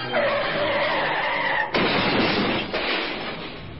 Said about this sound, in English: Flinging their ropes so that they catch onto a ledge two stories up on the building behind them, the two clamber up out of harm's way as the killer car, driving right up on the sidewalk, goes out of control.